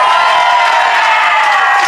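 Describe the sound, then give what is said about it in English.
An audience claps and cheers together in a loud, steady wash of applause and shouting voices that holds at a constant level for the whole two seconds, with no single voice standing out. “I feel particularly sorry for the people who decided to clap.”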